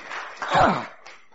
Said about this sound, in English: Ah, clap for the Lord Jesus.